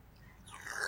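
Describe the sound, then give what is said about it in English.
A brief wet slurp of food that swells in the second half of the second, fairly quiet with no voices. “When all else fails, slurp it out.”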